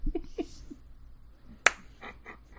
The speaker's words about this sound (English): That's just a slow clap for you, like, taking my adjectives.